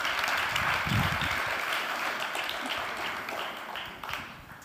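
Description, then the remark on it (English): An audience in a church applauding steadily as guests come up to the front, a dense wash of many hands clapping at once that carries on for several seconds with no one speaking over it. “Welcome them. Clap for them as they come.”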